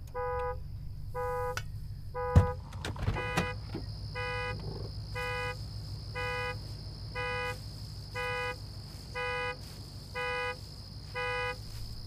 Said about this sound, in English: Don't turn off the engine! Why not? In case we have to get out of here fast.